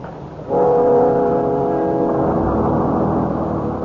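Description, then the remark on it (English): A crowded bus's engine surges up with a loud, droning tonal hum after a short quiet moment, then keeps rumbling steadily as it pulls away, with no voices. “how would it look for anyone from our side to try to jip a 50-cent bus ride?”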